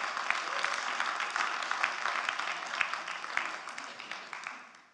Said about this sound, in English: You can give them a round of applause.